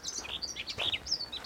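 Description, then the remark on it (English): Several loud birds chirp busily outdoors just outside the city of Norwich, their quick, high-pitched calls overlapping in a steady stream. The birdsong is lively, with no voices over it. “Some loud birds out here today.”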